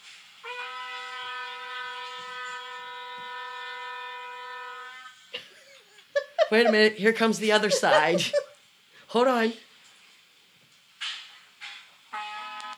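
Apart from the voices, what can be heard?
shofar being blown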